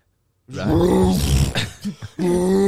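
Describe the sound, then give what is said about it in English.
A voice imitates a woman's heavy, phlegmy breathing: a long rasping, gurgling exhale followed by a couple of short snorting grunts and another drawn-out groaning breath, loud. “She starts fucking breathing on me, mate.”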